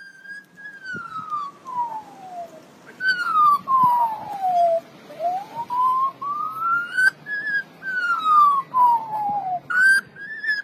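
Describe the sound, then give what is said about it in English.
An Australian magpie mimics a familiar sound: clear whistled tones that glide slowly down and back up in repeated wailing sweeps, siren-like, with faint background noise and no talking. “This bird, the common Australian magpie, is mimicking a sound all too familiar to us.”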